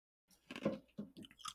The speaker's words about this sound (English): I really shouldn't chew ice on the mic. No, probably shouldn't. It is very loud.